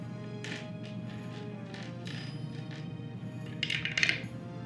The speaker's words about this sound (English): So that means you have to roll a 60 or better. Okay. On D100.